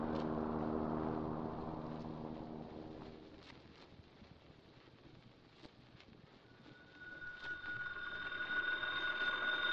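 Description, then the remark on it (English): A telephone at police headquarters rings steadily in the second half as a call comes in to the police, rising out of a rumbling, windy background after a low droning tone fades away; no one speaks. “Well, what do we do now? We phone the police.”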